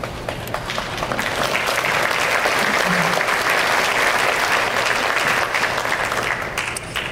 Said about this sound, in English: If the mics weren't slow, I would have never got that rant off, and I finally got a fucking clap.